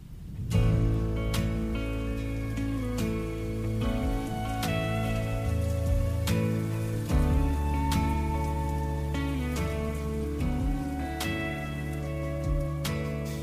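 Steady rain patters throughout, blended with a song's instrumental intro of sustained chords and plucked notes that strike every second or two; no one speaks.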